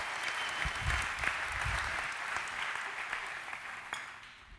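A room full of people claps steadily for several seconds, a dense wash of applause that stays fairly even in loudness, with a few low thumps and murmurs underneath before it starts to thin out.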